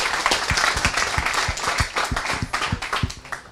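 An audience claps steadily after a talk, the sharp overlapping claps forming a dense, sustained burst of applause that stays loud throughout.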